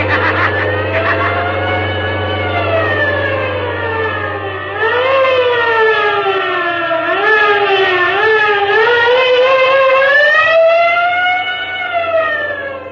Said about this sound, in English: Wait. What's that? Sounds like the police. Yes, it is. Hold on, Professor. It looks as if we're in for a chase.